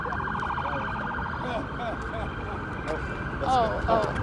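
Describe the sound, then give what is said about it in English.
An ambulance siren wails steadily in a busy outdoor setting, its pitch sweeping up and down and growing slightly louder toward the end as it approaches, with faint voices murmuring underneath. “Oh, here comes the ambulance is coming in hot.”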